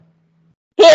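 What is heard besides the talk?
sneeze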